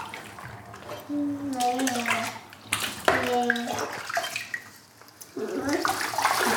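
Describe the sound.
Water sloshes and splashes in a bathtub close by, continuing throughout, while a young child's high voice makes a couple of brief wordless sounds over it.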